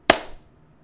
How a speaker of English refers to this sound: On the count of three, clap with me. One, two, three.